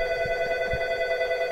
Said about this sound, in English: … decides to answer the office phone in the middle of an interview.